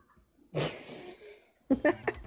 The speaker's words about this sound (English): What are you doing with your head? A fucking exorcist dog.